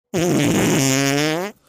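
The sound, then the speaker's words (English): A person blows a loud raspberry with their lips, imitating a fart to mimic deflating breast implants: one sustained, buzzy blat lasting just over a second before cutting off abruptly. “She's got like fart bags.”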